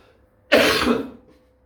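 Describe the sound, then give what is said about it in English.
A single harsh, raspy cough brought on by cat fur, starting abruptly and trailing off over about half a second, with quiet stillness before and after. “Even in my cough with this cat fur.”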